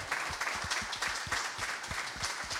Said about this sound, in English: B-team captain. Everyone, round of applause for